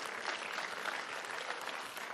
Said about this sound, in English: He got saved. That's a miracle. That's worth clapping.